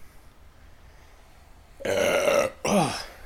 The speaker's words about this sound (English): Oh, man. Cans of Coke Zero. Give me the burps.